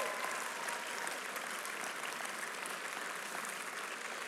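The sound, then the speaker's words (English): The audience of Fellowship Mosaic church applauds steadily after the announcement of a new audienceal lead, a dense wash of many hands clapping at an even level throughout with no voices rising above it. “And while you're offering up applause,”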